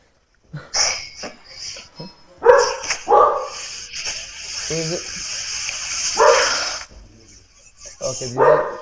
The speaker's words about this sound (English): Milo, shush. Oh my gosh, Milo. Top dog security.